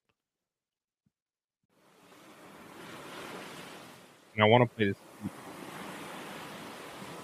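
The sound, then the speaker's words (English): Ocean waves wash onto the shore in a steady, rushing surf that swells in after a moment of silence and continues to the end, with a short spoken phrase briefly over it. “Moving to the ocean. So now I feel like going to sleep. I didn't want soothing.”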